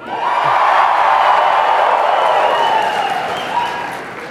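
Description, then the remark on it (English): A crowd cheers and claps loudly for about four seconds, a steady dense roar of voices and applause with a few whoops, tapering slightly at the end, as the audience votes by cheering for the event name Dragonsteel Extravamaganza. “Cheer for Dragonsteel Extravamaganza.”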